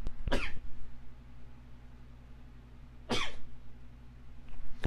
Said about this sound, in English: There's going to be more, so I'm going to have to pause right in the middle of the recording here and move the mic away from my mouth, and the sneeze, now that you just heard that sneeze, it's going to come back again